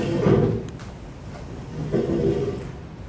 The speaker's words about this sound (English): I'm going to move some chairs.